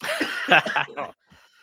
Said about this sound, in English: God, now I'm coughing like I'm getting choked up over here.